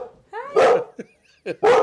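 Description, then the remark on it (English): A dog barks, two loud, sharp barks with a brief whiny yelp between them, all in under two seconds. “I have more of the dog bug. Hi, baby.”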